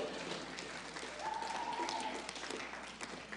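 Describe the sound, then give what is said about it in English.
A crowd claps steadily for a few seconds, a dense, even wash of many hands, moderately loud, with no voices over it. “Clap so I can drink some water.”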